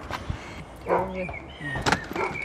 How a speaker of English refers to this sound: Just ringing the door.